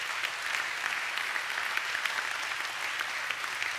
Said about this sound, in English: Would you give the Lord a hand clap of praise today?